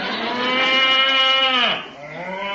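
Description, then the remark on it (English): A cow moos loudly in a long, drawn-out call with a falling pitch, then a second shorter moo follows after a brief dip. “Real cowhide. Made a bit of a noise. Well, it's still on the cow.”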